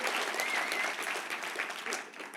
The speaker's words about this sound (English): You know what? Yeah, clap for God. God is amazing.